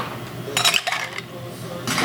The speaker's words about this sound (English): I'm going to put some ice.